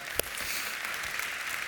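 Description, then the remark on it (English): An audience applauding for someone who was baptized: steady, dense clapping from many hands with no voices, fairly soft and even throughout, with one sharper clap standing out near the start. “And I got to see, yes, we can clap for that, come on, yes indeed.”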